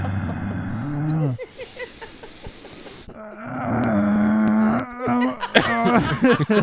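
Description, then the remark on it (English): A voice imitates heavy, groaning breathing into a microphone held at the mouth: drawn-out low voiced moans broken by a loud, harsh rush of breath, then more strained, wavering groans. “he sits there and breathes into it”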